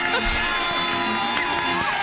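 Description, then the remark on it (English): An applause and cheering sound effect played for a game winner: a dense wash of crowd cheering and clapping, loud and continuous for about two seconds, with scattered whoops and shouts rising out of the noise. “Get the clap.”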